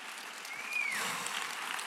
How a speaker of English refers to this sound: Come on, church! Let's stand and give them all applause. Woo!